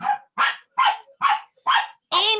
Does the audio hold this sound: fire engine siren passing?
no